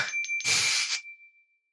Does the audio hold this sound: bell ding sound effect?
yes